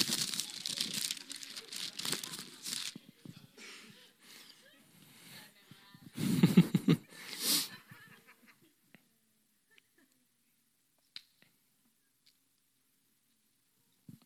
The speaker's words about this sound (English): This is John 13. I guess I'll make the sound of pages turning.